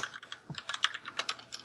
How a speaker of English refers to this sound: That is me typing on my mechanical keyboard.